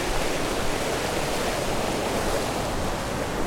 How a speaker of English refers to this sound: I'm getting quite close to the stream. Don't know if there's a bridge across, otherwise I'm going to have to retrace my steps. Yes, there's a decent body of water here. The path follows it, so let's see if there's a way over.